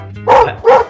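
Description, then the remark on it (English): A human voice imitates a dog barking, two loud woofs in quick succession with a short gap between them and no other talking. “Your dog voice is, like, amazing.”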